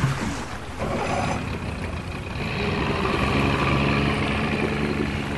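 A motorboat engine drones steadily across the water, a continuous low rumble mixed with the rush and splash of the hull cutting through, holding a fairly even loudness throughout.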